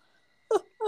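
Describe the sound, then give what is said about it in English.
Two short, voiced, moan-like sounds from an exhausted person yawning at 11 o'clock at night, each with a falling pitch and a breathy edge, separated by a brief pause. No words are spoken. “Sorry, I'm yawning because it's 11 o'clock when we're filming this right now and I'm exhausted.”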